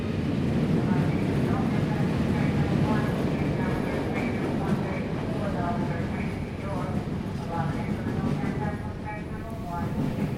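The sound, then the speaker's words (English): Busy train station ambience: a steady low rumble fills the space while indistinct voices murmur throughout, forming a constant crowded backdrop with no single sound standing out. “Train station.”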